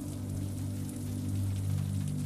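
Steady rain pelting on the windows of a home, a continuous soft hiss with faint scattered taps, layered over a low, constant hum. No voices are heard.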